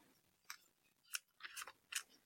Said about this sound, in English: A hooded figure sits across from him. Their bony fingers are shuffling through a deck of cards.